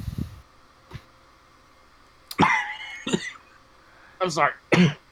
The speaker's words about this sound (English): Sounds like somebody swallowed down the wrong pipe.